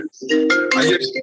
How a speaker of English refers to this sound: That's somebody I know ringing you